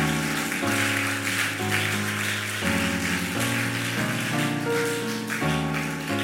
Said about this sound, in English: Oh, that's, if you want to clap, go ahead and clap.